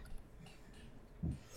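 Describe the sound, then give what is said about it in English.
A single dull, low-pitched knock thumps once against a quiet, faintly hissing background, with no voices present. “That knock you just heard.”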